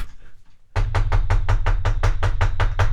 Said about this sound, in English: I kicked him out. Now there's somebody knocking at the door.